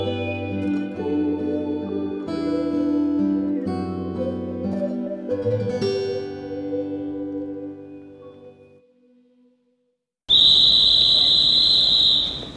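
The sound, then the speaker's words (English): Music with piano and singing fades out, and after a short pause a car horn blares as someone down the street leans on it, held down in one loud, steady, high-pitched blast for about two seconds before cutting off. “It's my someone down the street leaning on the horn.”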